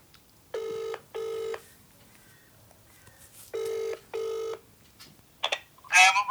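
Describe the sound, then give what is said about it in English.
A phone line rings out in two double-ring bursts, each pair of buzzy tones separated by a pause, then a short rustle and clatter as the call connects. “We phone him back.”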